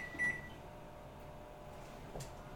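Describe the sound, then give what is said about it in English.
A single short, high-pitched electronic beep from an oven timer being set for 11 minutes for a batch in the oven, followed a couple of seconds later by a soft button click over a faint background hum. “Timer. 11 minutes.”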